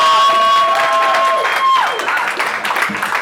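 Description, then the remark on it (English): An audience applauds loudly for a group of young kids, a dense, steady wash of clapping mixed with crowd cheering, and a high whistle-like tone rings out during the first two seconds. “we get a round of applause for these young kids real quick, though?”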